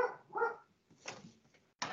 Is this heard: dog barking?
yes